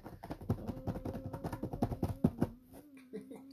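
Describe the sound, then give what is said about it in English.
A deck of cards is shuffled in a quick, dense flurry of crisp papery clicks for about two and a half seconds, with a low steady hum running underneath and continuing after the shuffling stops. “Shuffle intensifies.”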